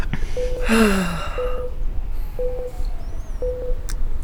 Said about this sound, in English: He says, breathe deeply. Oh, she's breathing deeply. Citizen's on. Oh, she's breathing. She's going for it. She's sucking as much down as she can.